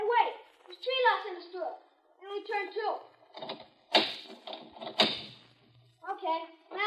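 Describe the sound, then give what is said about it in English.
A door with several locks, one still latched, is tried and rattled: two loud clattering jolts about a second apart, with people talking before and after. “The door still don't open.”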